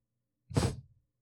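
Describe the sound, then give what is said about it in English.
A single small yawn, a short breathy exhale with a soft voiced undertone, lasting about half a second in an otherwise quiet moment. “What a nice little yawn.”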